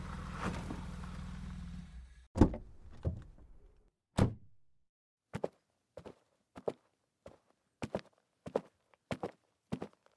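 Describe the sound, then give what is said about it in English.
The commissioner's car engine rumbles to a stop, followed by a couple of heavy door thunks and then a steady series of footsteps walking on a hard surface. No one speaks. “That's his car pulling up.”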